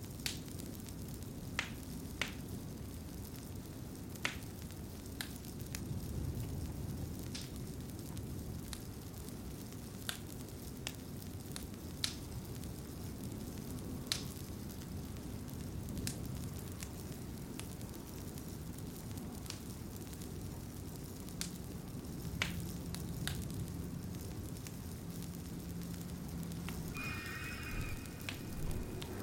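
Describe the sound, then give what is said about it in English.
A fire crackles steadily in a cottage fireplace, sharp pops and snaps scattered over a soft, continuous low rumble of burning wood, fairly quiet, with no voices. “In this moment, there is just you, the crackling fire, and the cozy cottage.”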